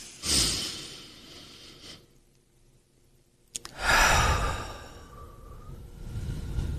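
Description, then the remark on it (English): An airy inhale through the nose lasting a couple of seconds, a short quiet pause holding the breath, then a long, slow exhale out through the mouth that trails off gradually; deliberate, unhurried relaxation breathing exercise with no talking. “I'll hold it for two counts. Okay. And then out the mouth for six counts.”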